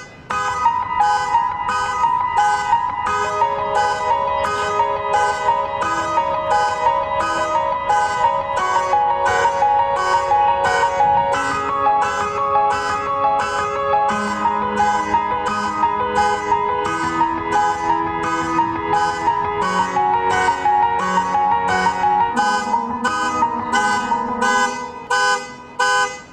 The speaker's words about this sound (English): They have taken a car alarm, something so annoying, and made it into a beautiful song. Wow. This is lovely. Take a listen.